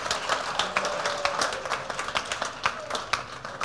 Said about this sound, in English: If you want to clap, you can clap. Oh. And the people who are not clapping, we know what is wrong with them.